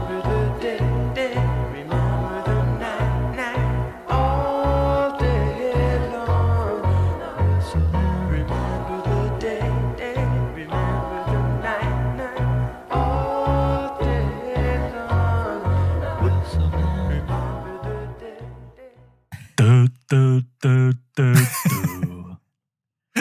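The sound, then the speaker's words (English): The final song on an album plays loudly with a steady pounding beat, bass and layered instruments, continuing for about twenty seconds before breaking into a few sharp, punchy stabs near the end. “Yeah, so that brings us to the final song on the album, one more to go.”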